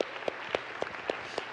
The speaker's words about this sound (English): In fact, can we just give a big round of applause for all of our workers and those of you that brought somebody last week?